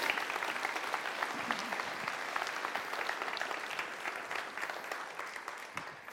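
A crowd claps steadily for about six seconds, a dense patter of many hands at an even loudness with no voices rising above it.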